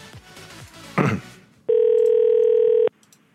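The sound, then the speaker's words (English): A phone call placed from a husband's phone number goes through: a short burst of noise, then a single steady electronic ringing tone holds for just over a second before cutting off, with faint sounds around it. “Now I'm calling from your fucking husband's number.”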